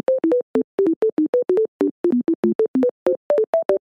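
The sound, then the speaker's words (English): A fast run of electronic telephone tones right after a phone call ends, about twenty short two-pitch beeps in quick succession, loud, like keypad dialing tones, with no voices. “Right after I just got off the phone.”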